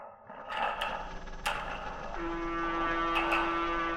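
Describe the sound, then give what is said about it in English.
A steady mechanical rumble of a ship's engines drones throughout, aboard a ship in the Atlantic Ocean bound for Liverpool on a calm night, with a sustained low hum joining midway and a few sharp clanks or knocks breaking through at intervals. “It's a calm night, the silence broken only by the steady rumble of the ship's engines.”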